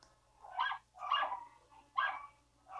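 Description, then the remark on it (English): Dogs barking in the background, a series of about four sharp barks at a steady, moderately spaced rhythm, with no one talking over them. “Oh god, the dogs are about to start barking.”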